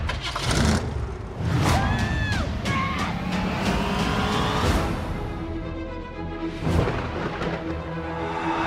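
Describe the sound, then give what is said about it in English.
A station wagon drives by, its engine rumbling loudly and rising in pitch as it revs, with a steady, rough roar continuing throughout and a few rattling clunks. “You went with the station wagon?”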